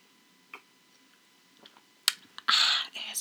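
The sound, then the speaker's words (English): Quiet sipping of wine from a glass: a few faint clicks and taps, then a brief airy slurp and a longer soft drawn-in sip, with no talking. “Hold on, let me take a sip of my wine.”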